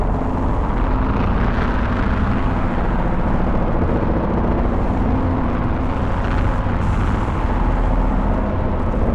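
A dense, rumbling modular synthesizer drone from a Morphogene holds steady in loudness, heavy in the low end. A band envelope modulates its amplitude, so layered tones swell and fade as the Morphogene's frequency spectrum changes and its texture slowly shifts.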